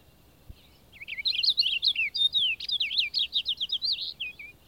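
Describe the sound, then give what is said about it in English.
A songbird in the woods pours out a rapid, varied song of quick chirps, slurred whistles and trills, including a robin-like call, high-pitched and loud, running nonstop for several seconds over quiet background with no voices. “And, throughout, the variety is so great and the strain so rapid that the impression is as of two or three birds singing at the same time.”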